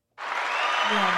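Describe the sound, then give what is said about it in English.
A short burst of applause for a couple who got engaged a month ago, starting abruptly and holding at a steady, fairly loud level for about a second, with a faint low voice-like hum surfacing near the end. “They got engaged a month ago. So applause.”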